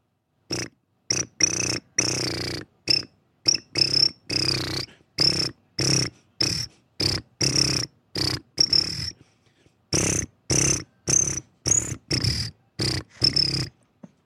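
Crickets chirping in loud bursts that pulse in a steady, marching rhythm, with dozens of short chirps separated by brief gaps and no talking throughout.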